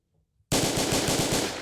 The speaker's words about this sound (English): Gunshots all around because this woman wants the smoke.